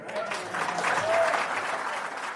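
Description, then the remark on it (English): A crowd of National party supporters applauds at the end of Luxon's address, a dense patter of many hands clapping at an even loudness throughout, with a faint murmur of voices mixed in. “And that's what he said, almost word for word, to applause from the faithful right at the end of his address last weekend, where he added this.”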